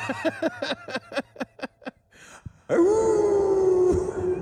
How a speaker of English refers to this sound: The howling. Stick around for the howling. Because everybody's kind of gathered around, you know? It's like a pagan ceremony of basketball.